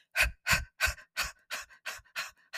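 A rapid series of about eight forceful panting exhales of Breath of Fire yoga breathing, the belly snapping back toward the spine on each, evenly spaced, each a sharp breathy burst that fades slightly toward the end, with no talking.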